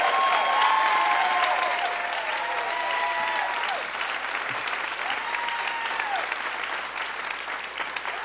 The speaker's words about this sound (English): Good clapping. Major clappage.